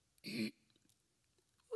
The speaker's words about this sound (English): They say that when you're, just so you know, when you're a vocalist, you're not really supposed to clear your throat, like, you know, because it's not really good for the throat.